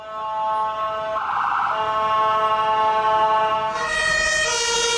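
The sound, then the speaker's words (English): A loud emergency vehicle siren in the European two-tone style, steady harmonic tones that shift pitch partway through, sounding continuously for about five seconds with no talking. “That's the European sound. So they were talking about changing that on police cars, ambulances, and all emergency vehicles.”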